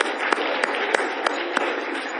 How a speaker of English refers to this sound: Give our IK teachers and kids a hand as they go back out.